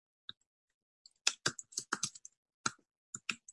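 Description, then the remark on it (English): A burst of keyboard typing as the words friendship and love are typed in: around a dozen crisp clicks struck in an uneven rhythm, with short pauses between clusters of keystrokes and no voices. “I'm just typing in friendship and love.”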